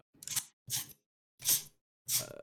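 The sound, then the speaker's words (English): Someone cleaning a laptop keyboard: four short hissing bursts spaced roughly half a second apart, each with a faint rattly undertone, and no talking. “What is that noise? I'm cleaning my laptop. Or my, can my you just keyboard.”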